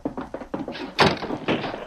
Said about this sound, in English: Gosh, that would have got us if you hadn't slammed the door.